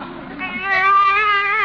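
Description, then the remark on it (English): A baby in a car lets out a single drawn-out wailing cry, fairly loud, rising in pitch and holding steady to the end, with no talking over it. “A baby! Hey, what are you doing in my car?”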